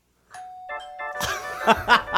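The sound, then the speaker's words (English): A doorbell chimes a clear ding-dong, its ringing tones sustained, before a louder, busier burst of noise takes over in the second half. “So the doorbell rings.”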